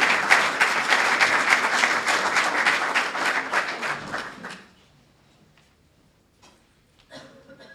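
A steady round of applause from a crowd, many hands clapping in a dense, even patter for about four seconds before fading out, leaving near silence with a faint voice at the end.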